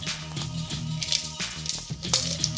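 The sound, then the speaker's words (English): Several sharp, gritty crunches of ice being chewed come in irregular bursts, each a brief crackly burst over a steady low hum. “Sorry, I'm crunching some ice.”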